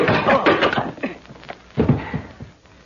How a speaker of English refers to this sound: Don't bother to get up off the floor, pal. I can find the door as easily as my fist found your chin.